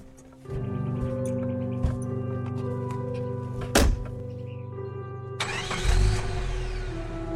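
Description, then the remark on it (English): A truck engine cranks and catches, then settles into a steady rumble. A sharp thunk cuts through midway, and the engine swells louder near the end as the truck takes off and drives away over a hill. “waved as the truck took off and disappeared over the hill.”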